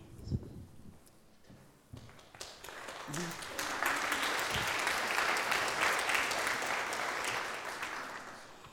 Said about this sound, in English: That was okay if you were really clapping for me or someone in the room, but we're talking about the God who created each and every one of us.